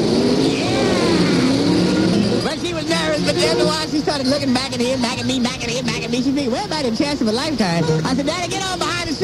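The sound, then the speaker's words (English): A voice loudly imitates a truck engine accelerating, with a rising growl that breaks into repeated revving swells and dips, like gears shifting, for several seconds. “She said, well, wait, I don't know if I said, Daddy, hit the gas.”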